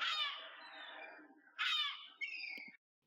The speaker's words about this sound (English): You go to the beach. You feel the hot sand between your toes and under your feet. You hear the seagulls cackle in the distance.